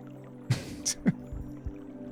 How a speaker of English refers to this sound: The water's running in the little fountain thing in the corner.